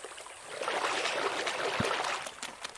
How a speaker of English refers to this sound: Muddy edge of the stream. Shallow stream.